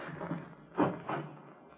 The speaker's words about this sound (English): Who shut the door?